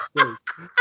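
Three quick squeaks from a rubber squeaky toy that a female dog is playing with, high and honking with a raspy edge, the first longest and the last a short sharp chirp, with no voices.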